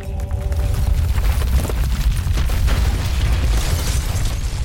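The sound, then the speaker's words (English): A deep, continuous rumbling roar of a big earthquake hitting a prison, with heavy low-end booming and crackling bursts throughout, loud and sustained with no voices. “And then an earthquake hit, a big one.”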